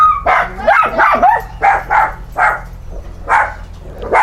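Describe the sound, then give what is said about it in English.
A dog barks in a rapid, uneven string of about eight or nine sharp, high-pitched barks, some edging into yips, with brief gaps between them and no talking. “Your dog just like is so quiet and then just barks.”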